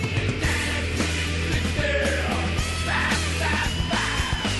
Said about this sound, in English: Listen to that crowd in the background. Oh, yeah. Where was that game? That was at the Loud Noble Center when they beat top 10 Mizzou.